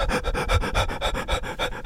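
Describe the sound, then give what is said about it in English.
A person imitates a dog's panting, about ten quick, breathy huffs in a steady rhythm, fairly loud, with no talking. “Jollop comes dancing to the centre stage, tongue out like that, like dogs do.”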